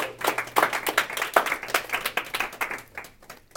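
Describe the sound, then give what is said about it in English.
A round of applause from a group attending a real estate coaching mid-quarter review, dense overlapping claps sustained for several seconds at steady loudness before thinning out and fading at the end. “So give yourselves a round of applause for being a part of a very special, special group.”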